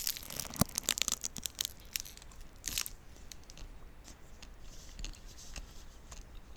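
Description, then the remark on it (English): A snack wrapper crinkles in a dense burst of crisp crackles for the first few seconds, then thins out into scattered, quieter rustles. No one speaks. “This is my wrapper.”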